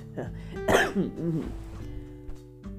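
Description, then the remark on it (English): A harsh cough bursts out from someone who choked up, followed by a few strained, throaty hacks and gasps as they clear their throat, over a faint steady background hum. “Got choked up and coughed myself a lung.”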